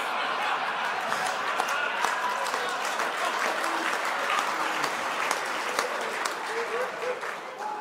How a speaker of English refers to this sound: By the applause, I'd be a little bit worried there, pal.